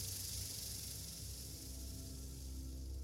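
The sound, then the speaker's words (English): A steady, dry buzzing hiss of more than one rattlesnake rattling, continuous and fairly loud for several seconds, with the rattles overlapping into one dense sound and no voices. “And now there are rattles echoing all around. There's more than one snake down here.”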